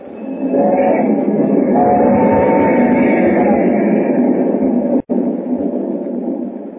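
A loud, steady roar of a train rumbling along the tracks at night, dense and continuous throughout with a brief cut near the end, with no voices.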